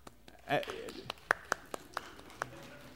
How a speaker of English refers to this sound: You know, you can applaud.